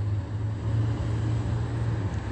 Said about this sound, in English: Omnitrans, bus number 1216 going westbound on Hope Boulevard is crossing path.